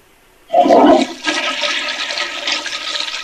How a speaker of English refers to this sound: Still going all over the floor. Okay, why do you continue to keep flushing the toilet? Because I'm trying to get the bed bugs to go down.